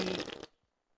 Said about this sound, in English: if you're, like, one of those, like, morning show radio host guys, you got to have a fart. Whoa, who farted? It's Stinky in the studio. Who's that coming through? Stinky.